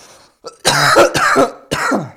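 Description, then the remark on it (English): Three harsh coughs into a microphone in quick succession, loud and raspy, with a brief breathy intake before them and no talking. “Oh, I'm sorry, I'm coughing into the mic.”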